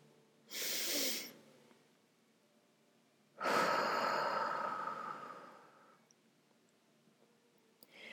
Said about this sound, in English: Let's breathe in deep, hold for three, and then release. So we'll do like a three count, inhale, hold, three count, and then exhale, three count.